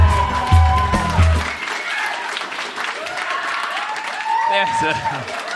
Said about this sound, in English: Famously, the best way to start any live comedy show is having to ask the audience to please clap.